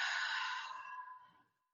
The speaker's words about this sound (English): Yeah, so let's do this a couple times. Inhale through the nose. Exhale out through the mouth. Last one, inhale and exhale.